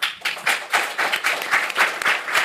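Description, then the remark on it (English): An audience at a discussion bursts into sustained applause, many hands clapping in a dense, steady crackle that holds at a fairly even loudness for a couple of seconds, with no voices over it. “It's impossible to defer clapping in this discussion.”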